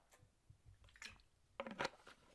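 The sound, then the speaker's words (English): Plastic crinkling and squeezing of a water bottle being opened, a few sharp crackles and a twist, the loudest burst near the end, with no talking. “Sorry, I'm opening my water bottle.”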